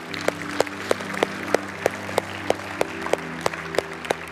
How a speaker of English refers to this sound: Come on, let's give God a round of applause today, can we?